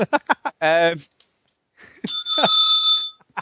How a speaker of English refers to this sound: Why do you keep ringing that bell? I want to make it weird so people can't work out why I'm ringing it all the time.